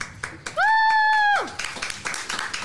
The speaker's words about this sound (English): And people were clapping, which is the concerning part to me.